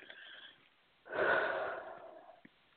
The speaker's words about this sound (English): Now take another breath and see how you're breathing.